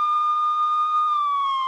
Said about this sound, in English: So I do have the siren for a reason.